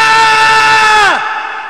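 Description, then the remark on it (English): A man lets out one long, loud yell, holding a steady pitch before it sharply drops off at the end, followed by a reverberant tail from reverb added to the sound effect that lingers briefly after his voice stops. “Okay, so all right, now here's the same dude. Oh, okay. With reverb and he didn't hit a wall.”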